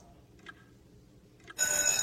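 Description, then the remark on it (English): After nearly a second and a half of near silence, a bell suddenly rings out loudly to signal the start of a 30-question test, a bright, continuous metallic clang that sustains through the end. “We'll begin at the sound of the bell.”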